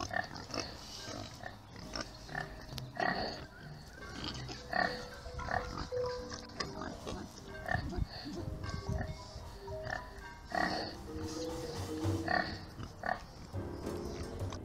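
Pigs oink and grunt in a busy, continuous stream of snorts and squeals, with overlapping calls throughout and no talking.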